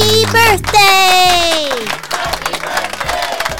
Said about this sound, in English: Let's give them big rounds of applause and big old happy birthday.